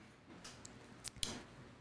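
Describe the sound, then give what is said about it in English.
A pen writing notes scratches across paper in a few short, quiet strokes with small taps between them, faint, with no one talking. “Dr. Amanda is writing notes.”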